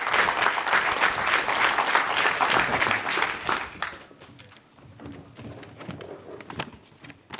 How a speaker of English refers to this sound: Please round of applause.